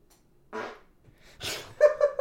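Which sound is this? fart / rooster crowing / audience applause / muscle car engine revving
fart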